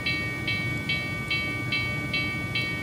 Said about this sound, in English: train. Choo-choo.